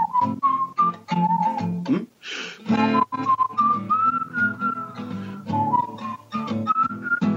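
Someone whistles a song melody, a clear, steady tune of held and gliding notes that rises and falls, broken briefly by a breathy rush partway through, with a low accompanying hum underneath.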